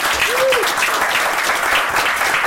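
An audience claps steadily in a dense, even wash of applause for a musician about to play, with a brief whistle-like tone rising and falling early on. The clapping holds at a constant loud level throughout.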